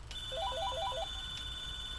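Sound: telephone ringing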